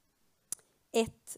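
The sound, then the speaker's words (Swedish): A few quick rustles of the pages of a Bible being turned, beginning with a sharp click and followed by two brief papery swishes in under a second. “Följ med, jag vet att jag slår mycket i Bibeln nu.”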